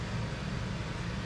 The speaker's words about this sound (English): There's like a water truck out there. Pumping water or something. It's a weird looking truck.